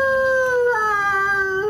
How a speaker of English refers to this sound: We're going to throw the wolves on for him.